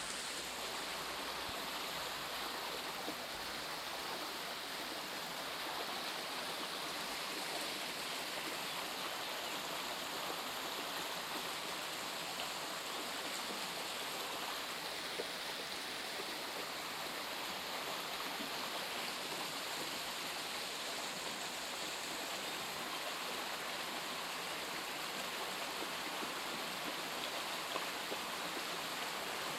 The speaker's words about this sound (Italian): A small waterfall produced a pleasant white noise. The water pools and swirls.